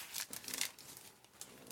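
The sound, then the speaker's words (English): Quiet papery crinkling and rustling as sheets of very smooth paper are handled, with a few brief brighter rustles and no voices. “Different, very smooth paper here.”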